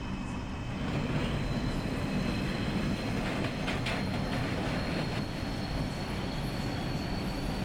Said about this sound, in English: And this train doesn't seem like it's going too fast.